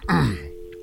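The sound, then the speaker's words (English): A quick throat-clearing grunt, then a steady, even telephone ringing tone starts and holds at moderate volume as a call to the film distributor Lionsgate connects, then goes to voicemail. “It's ringing.”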